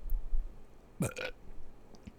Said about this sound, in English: Just a burp.